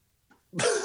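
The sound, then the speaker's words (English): A single loud sneeze bursts out after a brief, faint intake of breath, with no talking around it. “Oh, excuse me. Bless you.”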